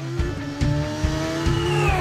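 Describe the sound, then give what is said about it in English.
An Indy car engine screams at high revs, its pitch climbing in steady sweeps with rapid gear changes from the gearbox punctuating the whine, loud with no voices. “Well, that is an Indy car.”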